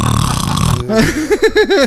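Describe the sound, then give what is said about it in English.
A voice imitates a loud, raspy snore of someone in the vents: a long rumbling throaty rattle, followed by a few short wavering hums and grunts. It is loud. “Just snoring in the vents.”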